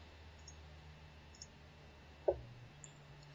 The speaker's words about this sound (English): As you hear the furious clicking of people in MS Paint. Some of us are using a proper image editor.